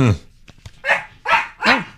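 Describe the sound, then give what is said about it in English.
Several sharp barks from dogs ring out in quick succession, loud, with short pauses between them and a brief yelp at the start. “Oh, they see him. The dogs have figured it out.”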